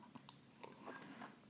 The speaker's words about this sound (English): So before we dive into the next chisme story, I'm going to take a sip of my white, gorgeous, rich white lady one.